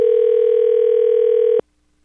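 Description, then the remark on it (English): A single steady telephone ring tone, loud, holds for about a second and a half as someone dials a phone number, then cuts off abruptly into silence. No voices are present. “Andrew's passed her number over to me. I'm dialing it up as we speak.”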